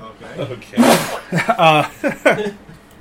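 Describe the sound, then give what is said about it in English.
A single sharp sneeze bursts out, followed by a few seconds of voiced, speech-like sounds. “Just gonna sneeze.”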